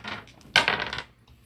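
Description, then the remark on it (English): Dice are rolled on a table in a tabletop game, needing 4 or better for a medium laser shot. They clatter in a quick burst of sharp, rattling clicks that settle within about half a second, after a softer rustle, with no voices. “Let's just do the medium laser. Okay, roll it. 4 or better.”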